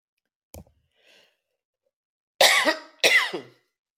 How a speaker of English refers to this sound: I'm sorry that I'm coughing.